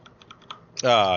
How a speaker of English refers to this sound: Typing here.